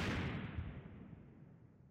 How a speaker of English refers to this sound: All the sounds of the battle behind her began to fade. Eventually, there was one final longer explosion, and then no more.